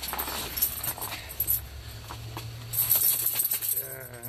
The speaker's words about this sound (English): Digging my keys out of my jeans with a gloved hand.